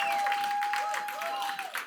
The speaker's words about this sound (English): And one of our traditions before we begin, we get a little rowdy before. Can we give Jesus a round of applause?